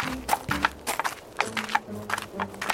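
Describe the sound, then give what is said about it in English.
A steady series of about seven hollow knocks on a big door with a keyhole at the top of a mountain, knocked to check whether it is hollow; evenly spaced and fairly loud, each a sharp wooden rap with a short ringing resonance. “Why are you knocking? You think someone's going to let us in? No, I'm checking if it's hollow.”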